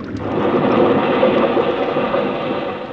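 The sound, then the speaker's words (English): An out-of-control motor launch crashes into rocks in a loud, sustained roaring rumble with a brief sharp knock near the start, steady for about three seconds, with no voices. “He's heading for the rocks, crazy nut, he'll crack up.”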